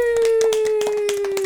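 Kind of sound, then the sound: human body sound, hands clapping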